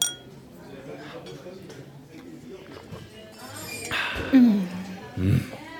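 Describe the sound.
Glasses of Veuve Clicquot champagne clink together in a toast in Paris, a couple of bright, ringing taps, with murmured voices and soft background noise around them.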